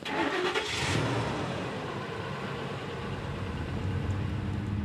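A loaded truck's engine cranks over with a short burst of noise, then settles into a steady, low rumble as the vehicle pulls away to drive slowly down unmarked logging roads. It sounds moderately loud, with no voices.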